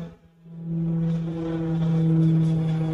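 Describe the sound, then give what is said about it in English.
A small propeller plane's engine drones steadily in a played video of a plane stolen in Mississippi whose pilot threatened to crash into a Walmart; a low throbbing hum with a buzzing edge that swells slightly, fairly loud with no voices. “How the hell do you steal a plane anyway? Let's watch the video.”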